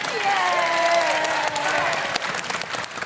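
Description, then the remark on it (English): A short burst of steady, dense clapping from a small group, loud, with a drawn-out vocal whoop or cheer riding over the first half before the applause thins slightly; the group claps for someone adding up 6, 4 and 4 for fire damage. “Don't clap me for adding up 6 and 4 and 4.”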